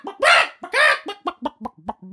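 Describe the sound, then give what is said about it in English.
A person imitates an angry chicken: two long, loud, harsh shrieks followed by a rapid string of short clucks. “Be an angry chicken. I want like a pissed off chicken.”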